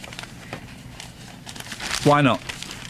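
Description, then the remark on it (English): Steady crinkling and rustling of newspaper back pages being folded and creased into paper aeroplanes, with a short voiced sound from someone briefly cutting in near the end. “Right, instead of making paper aeroplanes out of the back pages, maybe you should, I don't know, read them.”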